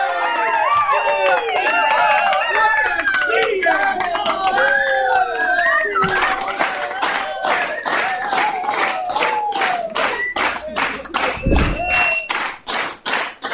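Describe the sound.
Excited whoops and cheering voices give way to loud, steady, rhythmic hand clapping from a small group, continuing for several seconds with scattered vocal cheers mixed in.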